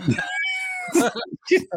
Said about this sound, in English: That cat was whooping that ass.